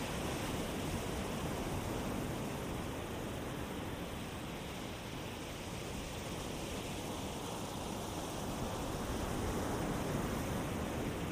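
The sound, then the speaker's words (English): A steady, soft wash of ocean surf rolls gently onto the shore without pause, a continuous hiss of water at moderate volume with no distinct individual crashes and no voices. “And the waves are gently crashing toward the shore, right at your feet.”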